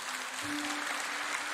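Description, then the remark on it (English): A crowd claps steadily, a dense, even wash of many hands with no break, over a low, constant hum, and no one speaks. “And I want to encourage you, if in case, go ahead, clap your hands. It's a good place to clap.”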